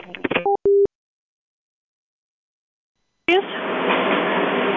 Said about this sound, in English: Oh, sorry, the phone was really loud there.